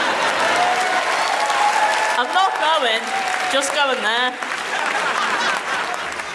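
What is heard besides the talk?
audience applause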